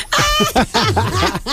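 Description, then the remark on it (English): A hoarse, quacking cough repeats in several loud bursts, raspy and honking like a duck, with only brief pauses between fits. “you should put out a … statement saying you can't control your friend's cough”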